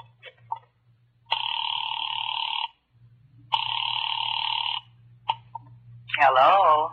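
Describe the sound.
After a caller dials a number and waits, two long ringing tones sound over a telephone line, each lasting over a second with a pause between, above a low steady hum; brief clicks follow before a voice starts at the end.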